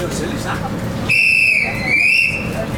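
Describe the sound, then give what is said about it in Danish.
A shrill train whistle sounds in two long blasts, the second after a brief dip, high-pitched and loud over a murmur of background noise and crowd, as the train departs. “Yes, jeg tror, den kører nu.”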